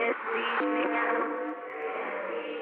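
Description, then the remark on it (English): Music squeezed through a narrow filter, thin and boxy like a tinny radio, with the bass and treble cut away; steady sustained tones play continuously at moderate volume, with no voices. “Now we have it through a filter.”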